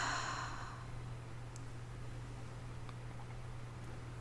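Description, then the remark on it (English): A slow, deep cleansing breath released after stopping tapping, like a soft sigh, breathy at the very start, then fading into quiet hum. No one speaks. “All right, gently stop tapping and take a deep cleansing, relaxing breath in and release.”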